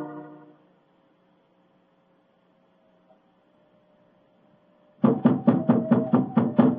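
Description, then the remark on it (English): After several seconds of quiet low hum, a loud burst of rapid knocking on the wooden door of an elephant house rings out: about eight quick, evenly spaced, sharp raps. “Knock again, old fellow, will you?”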